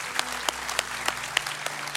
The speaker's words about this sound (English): Can you put your hands together and give God praise right now in advance, thanking them for that salvation?